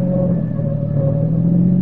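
A car engine drones loudly and steadily at high speed as the car is driven recklessly around curves, its deep hum and higher whine holding constant with a rough rumbling texture throughout.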